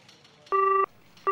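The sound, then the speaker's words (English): Louis's telephone rings with an incoming call: short, steady electronic bursts of a bright two-tone chime, repeating after a brief gap, clear and loud with no voices. “Louis's getting a call.”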